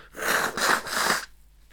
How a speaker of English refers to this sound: I'm also going to blow my nose. So enjoy that.